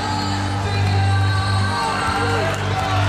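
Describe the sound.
A home crowd at Alaska Airlines Arena roars and cheers steadily for about three seconds, coming to its feet late in a Washington Huskies versus Oregon Ducks basketball game with Washington leading 61–60. A dense, loud wall of voices with scattered whoops, under a low constant hum.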